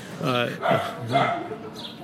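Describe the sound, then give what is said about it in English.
A dog barks a few times in quick, uneven succession, the yappy, tonal barks clear against a quiet background. “The speakerman's dog, some dog named Dog Shit or something.”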